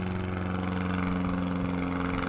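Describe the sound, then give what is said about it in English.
A steady, droning engine roar with strong low humming tones holds at an even loudness throughout as an airplane flies over an outdoor recording, with no voices. “As we have an airplane flying over, gives you the mystery that we're filming or recording this outside.”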